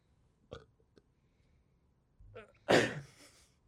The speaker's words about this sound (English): Well, I got burp.